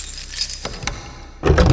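Keys jangle with bright metallic clinks in a few quick bursts, then a louder, fuller rattle and clunk at the end as the lock of a plain brown, unmarked door at an upstairs landing is undone. No one speaks.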